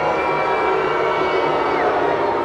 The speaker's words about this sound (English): Wow, I got booed by my own sound effects library.